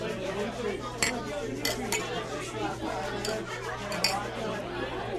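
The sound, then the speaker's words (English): Glasses clink together in a toast, a handful of bright, sharp taps scattered over a few seconds amid a steady murmur of background chatter and a low hum. “Let's pour a little bit out for his wife. Cheers.”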